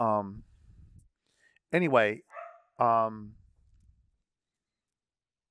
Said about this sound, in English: They're all barking because there's bears on the porch.